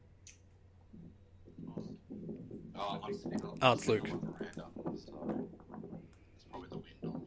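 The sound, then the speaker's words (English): A brief, close crackle of plastic creaking and clicking against plastic, right up at the microphone, cutting through the middle of quiet, ongoing conversation. “Just sound like plastic creaking on plastic, that's all.”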